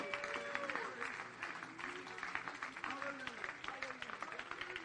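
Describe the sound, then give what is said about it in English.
An audience at an evening service claps hands in praise unto the Lord, a sustained, dense, steady burst of applause, with voices murmuring and calling out underneath. “In Jesus' name, would you give a hand clap of praise unto the Lord?”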